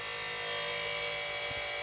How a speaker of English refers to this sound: Ooh, there's some construction outside. We got a chainsaw going. Let's take a little pause, and hopefully, I think they're cutting tile.